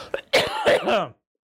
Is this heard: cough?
yes